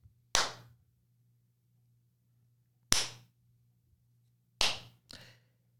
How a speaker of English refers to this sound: All ready? Yep. Clappy claps.